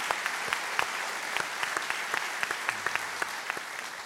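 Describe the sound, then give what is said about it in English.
A crowd applauds steadily, a dense wash of many hands clapping with sharp individual claps popping out irregularly, sustained at an even moderate level throughout with no voices. “Absolutely, that is applause worthy.”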